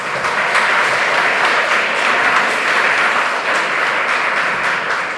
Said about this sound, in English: Before we start, can we just give another round of applause to Roderick for making this movie?